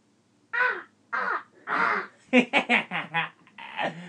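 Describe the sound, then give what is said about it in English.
A child's voice does a run of raspy, cawing bird-call imitations, three drawn-out caws followed by a quick burst of shorter ones and a final longer call. “what do the birds do?”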